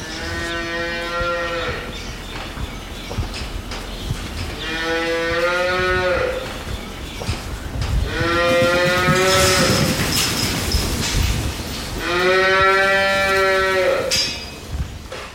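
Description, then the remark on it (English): Cows on a dairy farm moo four times, each call a long, loud, drawn-out low bellow spaced a few seconds apart, over a steady rustle of farmyard background noise. “if you're riding around on the bike or you're out in the heat of the day and you're pretty uncomfortable, your cows are a lot more uncomfortable”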